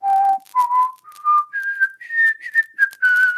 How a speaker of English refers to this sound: I'm just kind of wondering how many people would get the reference if I were to just start whistling.